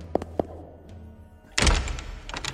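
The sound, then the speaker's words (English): Heavy doors being pulled open: two sharp wooden thunks, a brief pause, then a loud, rough grinding rush of movement that carries on to the end, with no voices. “The smell hit Yellowfly the moment he pulled open the doors.”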